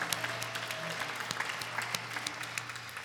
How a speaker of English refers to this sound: But if you would just raise your hand just so we can see you and just clap it up for you, because we're glad that you're here worshiping with us. Welcome.